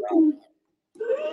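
horse neighing

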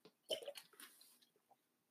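drinking water

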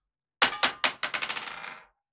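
dice being rolled

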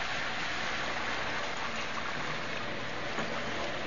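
rain falling

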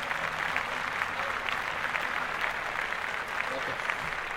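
applause

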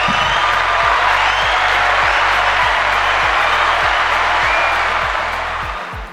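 audience applause

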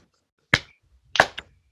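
slow clap

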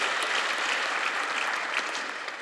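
audience applause

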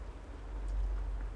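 rain falling

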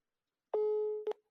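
phone busy tone

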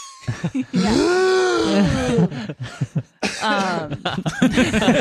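cough

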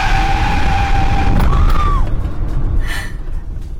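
car skidding

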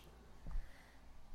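sneeze

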